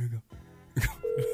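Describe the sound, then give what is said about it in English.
A phone call being dialed, with brief muffled voices and clatter, then a steady, moderately loud ringing tone that starts partway through and holds to the end. “Let's see if it dials.”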